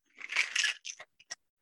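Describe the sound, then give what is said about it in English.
A cocktail shaker holding a drink with orange bitters is shaken briefly, giving a dense, bright rattle of ice for under a second, then three or four quick, separate clinks as the shaking stops. No one speaks. “Now I'm going to shake it.”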